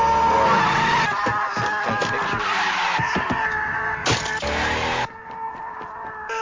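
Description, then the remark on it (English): Loud, sustained tire squealing as a car skids in a Bridgestone tire commercial, with sharp tonal screeches and engine noise lasting several seconds before dropping off abruptly near the end. “Notice his car. This is a Bridgestone commercial.”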